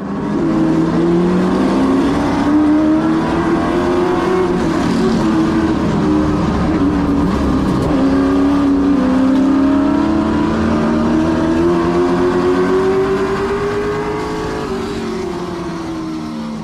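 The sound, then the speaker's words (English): A race car engine roars steadily, its pitch climbing through several long revs and dipping between gear changes, loud and continuous for the whole stretch with no voices. “Watching videos of you driving, we feel like we're in the car, but I'm nervous because I don't know how you do that.”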